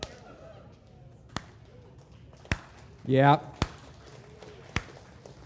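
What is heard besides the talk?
slow clap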